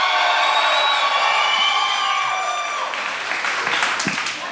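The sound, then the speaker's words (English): At the American Music Hall, a crowd bursts into sustained applause with loud cheering and whoops, a dense wash of clapping and high shouts that stays strong for several seconds before easing slightly. “So my next question is probably going to get a wild applause.”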